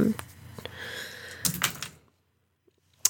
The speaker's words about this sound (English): make an investigate mystery roll for that. Okay, cool. Where are my dice? Here are my dice.